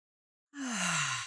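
A single deep inhale through the nose during a breathing exercise, a steady breathy rush with a faint low vocal tone, lasting under a second after a brief silence.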